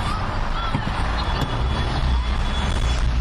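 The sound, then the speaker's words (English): Busy city traffic surrounds a car driving in Paris towards the Assemblée Nationale, with a big Fiat truck on its right, a steady wash of engine rumble and road noise that holds at an even loudness throughout, with a faint high whine running beneath it. “Surrounded by cars.”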